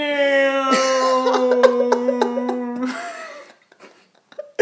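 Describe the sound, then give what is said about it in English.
A voice imitates a low-flying airplane with a steady, buzzing drone lasting about three seconds, overlaid with sputtering breathy bursts and clicks, then trailing off into a few faint clicks. “Low flying airplane noises.”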